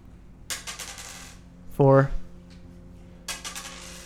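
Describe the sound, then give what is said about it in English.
Two quick bursts of dice clattering and tumbling across a tabletop, crisp, as a four-sided die (d4) is rolled twice, with a short vocal exclamation between them. “And then roll your d4 twice.”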